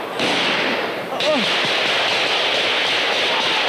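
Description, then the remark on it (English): Sharp gunfire cracks, a couple of sudden bursts, ring out in a crossfire as police move in, recorded by a Mohawk journalist, over a loud, constant wash of noisy commotion with voices mixed in. “It's gunfire.”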